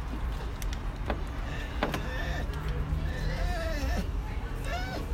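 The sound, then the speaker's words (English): A dog barks and yips in short, scattered bursts, fairly faint against a steady background rumble, with some higher whiny cries toward the end. “Some doggy commentary there.”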